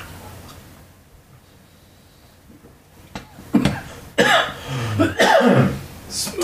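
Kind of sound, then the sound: human body sound, coughing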